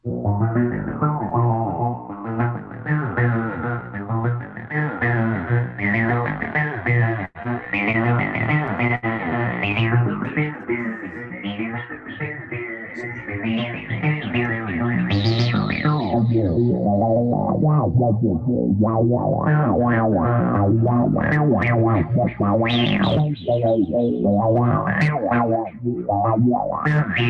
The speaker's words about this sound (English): So, but this is just a 303 part of it. And it's very basic, but you can hear that, wow, wow, wow, that what we call a bark or a wow, that only the 303 really does well.